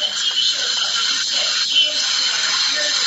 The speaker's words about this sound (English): It's a coffee machine you're hearing.